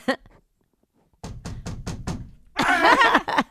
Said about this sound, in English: So what movie? What are they doing next door? I don't know. I keep hearing this banging.